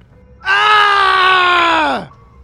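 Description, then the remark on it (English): A single loud, sustained scream of rage from outside, lasting about a second and a half, holding a steady pitch before sliding downward as it cuts off, with no talking around it. “She began to point this out to him when she heard a scream of rage from outside.”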